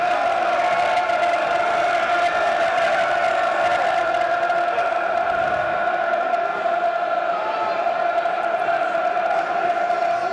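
football stadium crowd roaring

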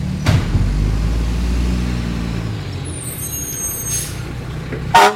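truck driving past

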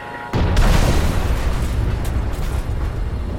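self-destruct explosion

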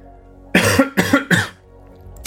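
coughing

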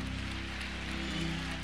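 audience clapping

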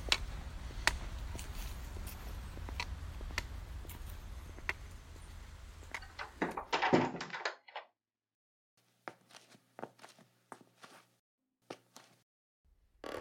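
door opening and closing

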